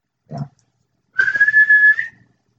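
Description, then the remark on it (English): A short muffled sound, then one loud, sustained whistle of about a second, held at a steady pitch and lifting slightly at the end, the kind used to call a dog, here whistled at a person. “I'm not a dog.”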